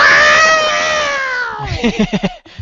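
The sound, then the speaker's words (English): A voice imitates a buzzer with a loud, sustained nasal drone that sags slightly in pitch, then breaks into a short run of choppy, rhythmic bursts before cutting off. “you make a buzzer noise.”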